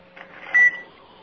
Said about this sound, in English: I like the beep.